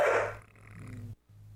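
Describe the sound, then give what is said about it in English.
A dog gives one sharp bark, followed by a low, steady rumbling growl that cuts off briefly near the end, with no talking; the dog is going crazy because somebody is coming in. “20-something seconds of this has been just the dog barking.”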